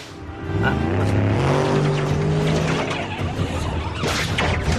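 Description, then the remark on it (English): A powerful 5,000-horsepower car engine in a movie scene revs loudly, its pitch climbing then holding in a steady roar, with rough tire and road noise mixed in throughout. “it's got tons of gas and air going into this 5,000 horsepower engine.”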